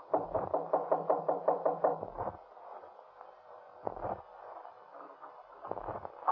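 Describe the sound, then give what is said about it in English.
Knocking on an apartment door at the top of the stairs, on the left: a quick run of about ten solid raps, then after a pause two more single heavy knocks, each standing alone with no talking. “Just go up the stairs and knock on the door on the left.”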